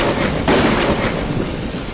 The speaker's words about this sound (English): The massive squid radiates with a blinding light before erupting into a brilliant explosion.